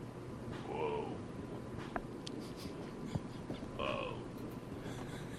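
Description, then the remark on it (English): A cat with a voice deeper than most cats gives two low, drawn-out meows about three seconds apart, moderately loud, with a couple of faint clicks and light room noise in between. “Voice is a little deeper than most cats.”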